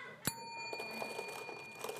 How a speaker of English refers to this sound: Okay, you ready? So when you hear the bell. No pre-punching here.